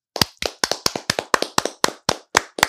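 Steady hand clapping, about a dozen sharp, crisp claps in an even rhythm of roughly four to five per second, fairly loud with no talking over them.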